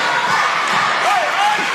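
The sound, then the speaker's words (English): Both crowds at a high school basketball Homecoming 2016 game on a Friday evening roar steadily, a loud dense wash of cheering and shouting voices throughout, with a few rising individual yells and faint thumps poking through the noise. “You hear both crowds just very into it.”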